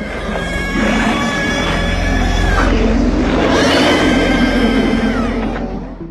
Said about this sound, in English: There's a scene where a group of dogs transform into a weird, goopy, Lovecraftian creature. The shrieking sound it makes was created by combining heavily processed bird calls with pig squeals.